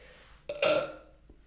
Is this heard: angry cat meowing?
no